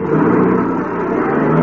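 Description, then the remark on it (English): A car engine roars loudly and steadily for a moment as a man hops into his car and accelerates hard away in a hurry, a dense rumble with no voices over it. “Hopped into his car and took off like a scalded skunk.”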